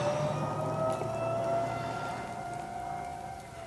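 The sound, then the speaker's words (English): A 1970s police car siren wails steadily, a sustained, slightly wavering tone that fills the few seconds at moderate loudness with low background rumble and no voices. “Oh God, 70s cop cars.”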